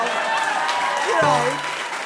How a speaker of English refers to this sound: I started to hear some rhythmic clapping. Let's hear it. I want to hear it.